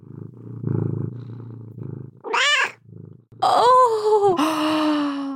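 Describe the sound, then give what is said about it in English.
A cat, Leia, purrs on a person's lap in a low, rhythmic rumble, then breaks into several loud, drawn-out meows and yowls that dominate the second half. “And then Leia's purring on my lap. Maybe I can get some kitty ASMR.”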